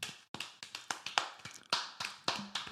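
About ten close, sharp hand claps at an uneven, stumbling pace, with slightly irregular gaps between strikes and no voices.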